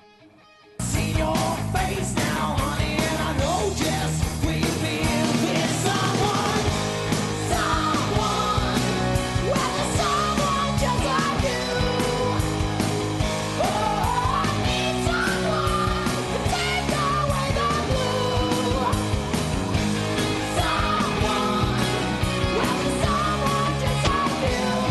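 A rock band song kicks in after a brief silence and plays loud and dense throughout, with driving distorted guitars, pounding drums and shouted, raspy vocals on top.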